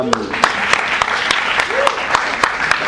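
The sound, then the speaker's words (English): An audience applauds steadily at a mention of an association endorsing academic boycott, a dense wash of clapping punctuated by a few sharper, louder claps, with faint voices and whoops mixed underneath. “No, it's okay. Clapping is fun.”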